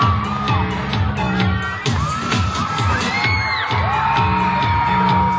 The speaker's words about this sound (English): Teenagers screamed in anticipation, the lights flashed, and the music started.